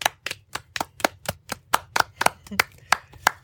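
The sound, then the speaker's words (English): Hands clap in a steady, fairly quick rhythm, around fourteen sharp claps over a few seconds, moderately loud with no talking. “It's our anniversary. It's our 10th episode. Clap, everyone.”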